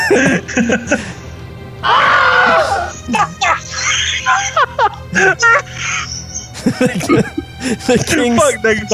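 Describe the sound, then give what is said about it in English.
Two young boys run out of a room, yelling and screaming down a hallway in loud, overlapping bursts, high-pitched shouts rising and breaking off repeatedly, frantic with no clear words throughout. “The two boys run out of the room and are heard yelling and screaming down the hallway.”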